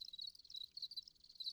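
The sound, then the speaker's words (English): Crickets chirp inside an apartment in a steady, high-pitched trill, the pulses repeating rapidly and continuously with no voices, sounding fairly quiet. “My neighbors haven't said anything, so maybe they just think it's like a white noise machine that makes cricket sounds.”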